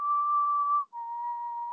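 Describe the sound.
A person whistles a creepy two-note whistle, each note held steady and clear, the second pitched slightly lower after a brief break. Fairly loud, with no talking.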